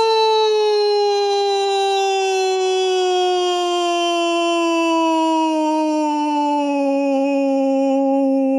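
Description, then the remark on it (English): A voice holds one long, loud, high scream-like note that slides steadily downward in pitch for about eight seconds, a man imitating a singer's descending scream from a song line, with no other sounds. “He sort of screams it, and this scream descends, like the rain does from the sky. It descends in scale.”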